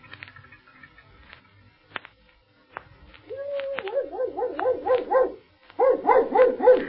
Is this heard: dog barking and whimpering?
yes